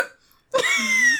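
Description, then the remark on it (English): A single sharp hiccup bursts out after a short pause, trailing into a brief voiced squeak. It is fairly loud and abrupt, with no talking around it. “Unfortunately, you're just gonna have to deal with the hiccups.”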